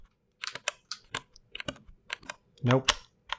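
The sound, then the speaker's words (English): Mechanical keyboard keys with black switches pressed one by one, the finger sliding off the side of each key, giving about ten dry clacks at an uneven pace with no ping or ringing after each press, and a brief murmur of voice near the end. “Like, okay, what I'm doing right now is I'm pressing it and then I'm sliding my finger off, which is really the way to make it ping, I think, right?”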